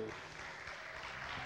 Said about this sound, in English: So let's have a round of applause to make them feel welcome.